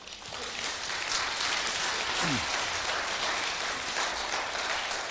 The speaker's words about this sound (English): Give them a round of applause right now.